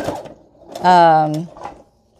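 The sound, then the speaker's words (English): A sewing machine runs for a brief burst, a steady humming whir lasting about half a second, with soft speech-like murmurs just before and after. “And we're sewing.”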